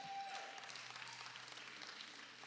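A church audience claps steadily, a dense wash of many hands applauding together at moderate volume for a few seconds, giving God a round of applause, with no one speaking over it.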